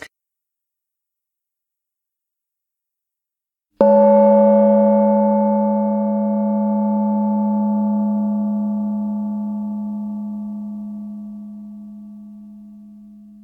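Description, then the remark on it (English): After a few seconds of silence, a single meditation gong is struck, its rich, layered tone swelling and then slowly ringing out and fading over about ten seconds, with no voices. “So the gong is going to sound and we're going to get started.”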